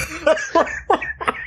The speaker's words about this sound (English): Somehow that didn't clip, but your cough did.